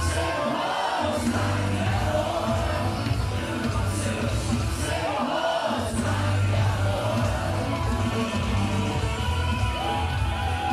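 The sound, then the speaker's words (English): A capacity arena crowd at an SHW wrestling show, the Rumble Jack in the Action Building in 2021, cheers and yells in a loud, unbroken roar, with individual shouts and whoops rising above the dense wall of voices throughout. “What a great reception from this capacity crowd here in the Action Building.”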